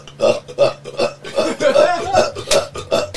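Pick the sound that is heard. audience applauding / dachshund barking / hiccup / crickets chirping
hiccup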